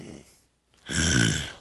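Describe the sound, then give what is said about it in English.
A person lets out a rough, throaty growl lasting under a second, loud, preceded by a softer breathy sound and a brief pause. “Just growl at it.”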